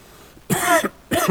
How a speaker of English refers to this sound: I don't know where the mute switch is, so... Turn your hearing aids off when I cough.